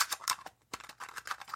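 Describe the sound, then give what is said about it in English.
Someone fiddling with and spinning a pencil sharpener: a quick run of small, crisp plastic clicks and light scrapes in an irregular rhythm, broken by a brief pause partway through, with no talking. “Or it's me messing with my pencil sharpener right here.”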